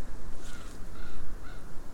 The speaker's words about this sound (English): Oh, there's a raven coming.